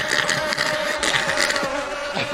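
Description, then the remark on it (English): A dense swarm of bees drones steadily, a continuous layered buzz with small swells in intensity and no voices over it. “Oh, man, the bees are buzzing.”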